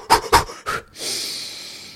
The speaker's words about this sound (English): Well, so what that second deep breath is to do is to get that the rest of that carbon that you might not be able to expel. That's what that second one is for.